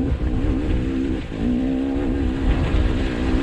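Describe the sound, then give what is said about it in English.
A motorbike engine in a played video revs in a loud, steady drone as the rider, on his first day on the bike, almost goes off a bridge; it dips briefly about a second in, then climbs back up and keeps buzzing. No one speaks over it. “He just almost went off the bridge to begin. He's this first day on the bike.”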